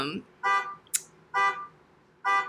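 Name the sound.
car alarm going off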